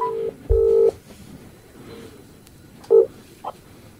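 Electronic phone tones as a call is placed from a phone held near a microphone: a few short beeping dial tones, a longer steady tone, then quieter tones with background hiss, no voices.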